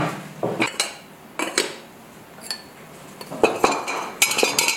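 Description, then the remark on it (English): Ceramic pots, mugs and vessels clink and tinkle as a potter takes them out of a kiln and sets them down, a series of irregular bright knocks and chimes, fairly loud, with no voices. “Some of my favorite videos of his are unloading the kiln, where you can hear all of the tinkly sounds of the pots and mugs and vessels as he takes them out.”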